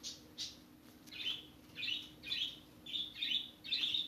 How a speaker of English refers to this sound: I keep thinking I hear them. It's just my fucking birds just walking around. Not walking around. I mean, like, they make clicking sounds that sound like footsteps.